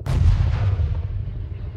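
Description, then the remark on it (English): A single loud explosion over Palomares, Spain, hurling flaming debris across miles of countryside, bursts in sharply, then a deep, heavy rumble rolls on and slowly fades, with no voices present. “I see them now coming closer together until at last they meet over Palomares, Spain, whereupon an explosion rips apart Satan's air force and hurls flaming debris across miles of Spanish countryside”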